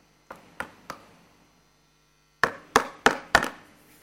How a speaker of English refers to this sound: And knock. What is that picture?